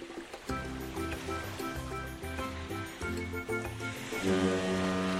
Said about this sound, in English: It's a great foghorn. Love it.